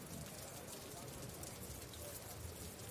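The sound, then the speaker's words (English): Steady downpour from a rainstorm patters against a roof, a dense, continuous wash of tiny drops with no breaks, even in loudness throughout. “rainstorm that begins to downpour, pitter-pattering against the windowsills as the students fervently try to close them, and you can hear like the sounds of the rain pattering against the roof and whatnot.”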